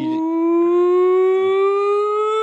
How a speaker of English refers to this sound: Sorry, that's the nonsense siren